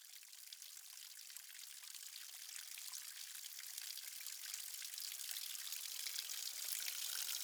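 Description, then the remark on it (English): Water trickles and splashes steadily down a great slab of sandstone, a continuous bright hiss of running water that swells slightly louder over time, with no voices present. “Listen to that water coming down that great slab of sandstone there.”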